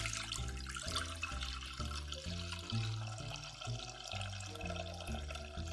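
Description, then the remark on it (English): Low-sodium store-bought chicken broth, chilled, about 32 ounces, pours steadily into a pot for boiling potatoes for potato salad. A continuous splashing gurgle lasts several seconds, with a stepped, tuneful low music bed running underneath and no talking. “I'm going to add my broth to my pot.”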